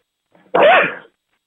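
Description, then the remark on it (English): A single loud sneeze bursts out after a faint, quick intake of breath, lasting about half a second before silence returns. “Bless you.”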